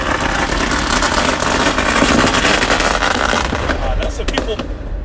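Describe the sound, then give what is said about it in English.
Fireworks crackle and pop in a dense, continuous barrage, with a few sharper bangs standing out near the end. The noise is fairly loud; people are setting them off about two blocks from the United Center. “People popping fireworks 2 blocks from the United Center.”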